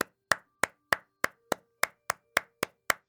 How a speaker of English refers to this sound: Whoa. And you hear clapping.